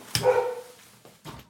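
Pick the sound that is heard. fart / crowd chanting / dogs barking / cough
dogs barking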